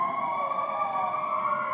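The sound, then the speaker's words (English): A fire truck siren wails loudly and steadily outdoors as it passes, its tone holding nearly level with a slight downward drift, with no one talking over it. “No telling where that fire truck is going.”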